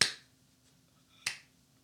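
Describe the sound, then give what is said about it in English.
Two sharp, isolated hand claps about a second and a quarter apart, each a crisp bright smack that dies away quickly, with a faint low hum in the quiet between them. “What the fuck are you clapping for?”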